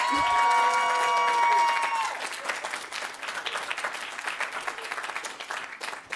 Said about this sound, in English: Sorry, guys, I think it's pretty clear. I understand. We will see you in appeals court, I guess. Even an amateur applause meter, I think, could measure this one. Sure. Television's got it.